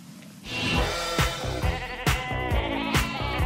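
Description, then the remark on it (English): Sheep bleat repeatedly and loudly, overlapping calls from a small flock with wavering, nasal cries and short pauses between them, no talking; sheep being sheared at the start of Norway's televised National Knitting Night. “Then there was a National Knitting Night, which started, of course, with shearing the sheep.”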